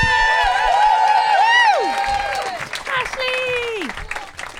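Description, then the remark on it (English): An audience applauds steadily while several voices let out long, rising and falling whoops and cheers, loud, fading slightly toward the end. “Ladies and gentlemen, please put your hands together”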